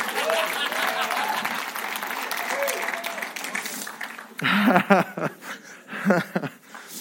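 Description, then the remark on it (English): An audience claps steadily in a dense, bright wash of applause, with scattered laughter and cheering voices rising over it in the final seconds. “If you're gonna clap me, come on.”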